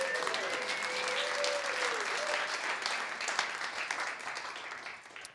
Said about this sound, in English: Somebody just give Him a clap offering right now.